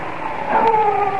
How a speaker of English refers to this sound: And then a dog began to howl somewhere far down the road.